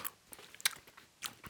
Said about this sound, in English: I hope you guys can't hear me chew like I can hear … chew in the mic.